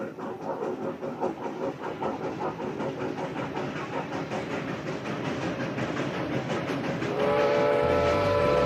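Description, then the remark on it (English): A steam locomotive chugs steadily in a fast, rhythmic beat in Kentucky, then a loud, shrill whistle cuts in near the end and holds as a sustained, piercing tone over the rumbling engine. “The shriek of the whistle broke through the still Kentucky sky.”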